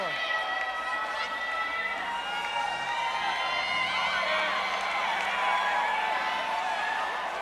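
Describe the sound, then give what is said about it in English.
A church audience shouting "hurry up, God" together, a dense, sustained roar of many overlapping voices with whoops and cries rising above it, loud and unbroken throughout. “Come on, pull on that neighbor and shout out loud, hurry up, God.”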